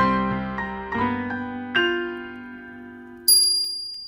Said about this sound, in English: The mantelpiece clock dinged its half-hour chime as Kevin descended the stairs.